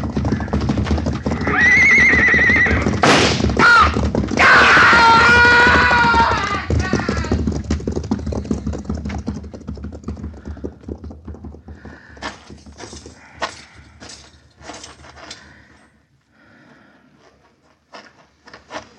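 A horse whinnies loudly and shrilly in the first few seconds, then hooves pound in a quick, uneven gallop that grows fainter as it moves away, as a rider tries to ride the horse out.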